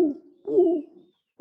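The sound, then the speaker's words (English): A soft, low dove coo repeats in gentle rounded notes with short pauses between them, moderately quiet, with no talking. “I think a dove moaning is a nice sound, don't you?”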